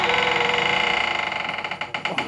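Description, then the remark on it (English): The unoiled door of the Shoutout Courtroom, unused for a month or two, is shoved open with a long, strained, high-pitched creak that ratchets rapidly, then breaks into a few uneven, jerky squeaks as it gives way. No one speaks. “It's been a few month or two out of the courtroom now, so the door might be a bit stiff. Just want to give it a bit of a shove.”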